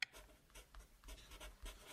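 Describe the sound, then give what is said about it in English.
Pencil scribbling on paper in quick, scratchy strokes, fairly quiet, with a brief low thump near the end. “you can't say hi 5 seconds after the pencil started.”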